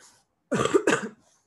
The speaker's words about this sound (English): I want to apologize now for any coughing that I do throughout this episode.